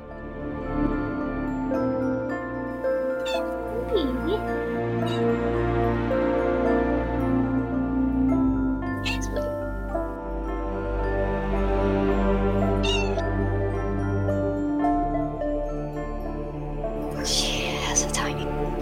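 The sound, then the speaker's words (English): A cat purrs loudly and steadily, a continuous deep rumbling vibration with a few brief snuffly breaths and small rustles mixed in. “There's some loud purrs.”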